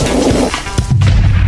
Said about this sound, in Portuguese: Duas bombinhas, tá bom pra você?